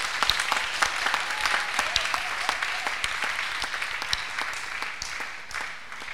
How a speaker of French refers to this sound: Applaudissez pour le Seigneur Jésus.